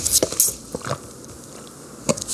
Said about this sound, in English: After your giant sip of water. Could you hear it? I don't know. Let's get another one.